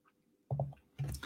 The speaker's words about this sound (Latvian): Tā, lai jūs redzētu, kā viņš man tur burbuļo un kas tur īsti notiek. Šādi te.